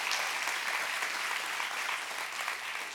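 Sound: audience clapping hands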